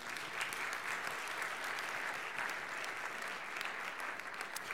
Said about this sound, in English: And that's going to help us multiply our missions ministry and giving, and I think God deserves a clap offering today.